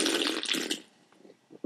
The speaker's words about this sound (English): Oh. My wife hates when I slurp the beer on the podcast.